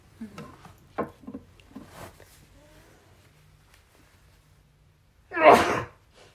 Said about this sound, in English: And a sneeze.